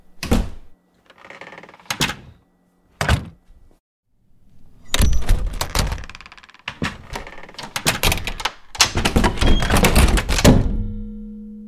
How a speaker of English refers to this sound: So I'm going to show you three different doors and how they sound differently. A big deal is how doors sound when they shut.